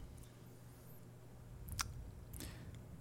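Someone takes a quiet sip of whiskey: two soft, wet slurping mouth sounds about half a second apart, over a low steady hum with no talking.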